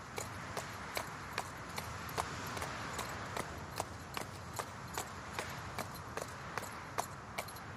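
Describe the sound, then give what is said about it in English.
Horse hooves clip-clop at a steady walking rhythm, sharp regular knocks repeating about twice a second over a constant low background rumble, with no voices. “I'll let you lead with the horse, and I'll follow behind on foot.”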